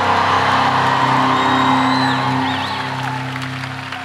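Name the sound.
audience screaming and cheering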